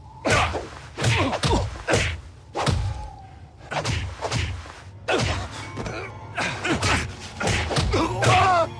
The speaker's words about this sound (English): But the brawling, that's very Indiana Jones. Like, there is a lot of fist fighting in those movies. Yeah. Oh, yeah. Punches more than he whips.